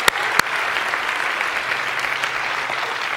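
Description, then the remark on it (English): An audience applauds the ushers steadily, a dense wash of many hands clapping at an even level throughout, with two sharp claps standing out at the very start. “Would you give our ushers an applause today?”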